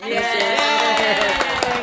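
A short burst of applause for a committee, steady clapping mixed with voices cheering and whooping over it, loud and sustained throughout.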